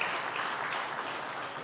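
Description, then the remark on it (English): An audience claps steadily throughout, a dense, even wash of many hands at moderate loudness with no voices over it. “For the identity, you can give a clap for that one.”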